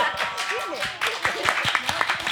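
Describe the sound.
A small audience claps in an uneven patter of sharp hand claps, with murmuring and a few voices mixed in throughout the brief burst of applause.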